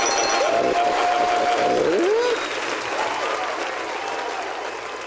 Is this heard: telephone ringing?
no